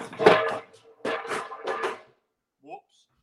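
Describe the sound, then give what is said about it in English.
Three loud bursts of clattering and banging from a frying pan, like pots and pans knocked around, over about two seconds, then a brief faint chirp after a pause. “You just battered somebody with a frying pan.”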